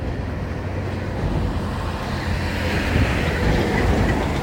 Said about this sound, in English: Comes a great big truck with a skip on the back. It's just like busier than Gran Vía on tiny Plaza Mayor in Cuenca.